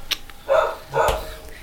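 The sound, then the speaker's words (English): Two sharp, loud dog barks in quick succession, with a brief click before them and quiet background afterward. “What the fuck's he barking about?”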